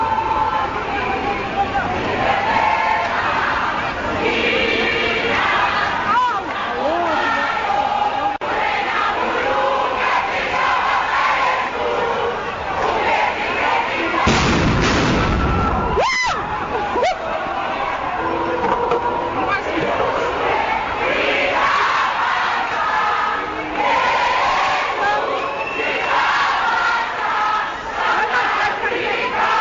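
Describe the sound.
A large crowd of protesting students at the parliamentary precinct chants 'Blade must fall' and 'fees must fall' in a loud, continuous roar of massed voices, with a sharp burst of noise cutting through briefly near the middle, as public order police drive them out with tear gas and stun grenades.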